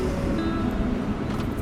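A truck's engine rumbles steadily at close range, a low, continuous drone with faint tonal whine above it and no voices.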